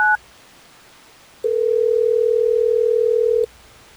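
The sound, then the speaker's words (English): A telephone line sounds as Hot 101.5 radio hosts place a call: a quick beep-like tone, a brief pause, then one steady, unbroken electronic tone lasting about two seconds before cutting off. No one speaks. “Well, let's try to get me on the phone.”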